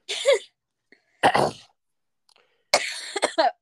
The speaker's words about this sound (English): We are just coughing.